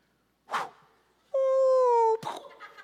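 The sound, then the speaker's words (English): A person imitates a sheep's bleat with one loud, drawn-out, nasal 'baa' held at a steady pitch that sags slightly, with short breathy bursts just before and after. “And the other sheep go,”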